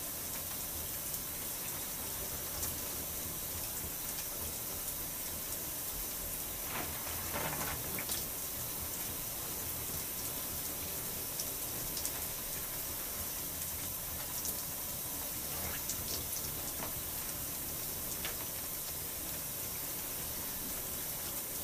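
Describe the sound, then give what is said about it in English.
Water runs steadily for the whole stretch, a soft continuous shower-like hiss with faint splashes and rustling now and then as braided hair is soaked under it and the scalp is shampooed with the fingers. No one speaks. “My braids are still saturated under the water. I'm just gonna shampoo my scalp with my fingers.”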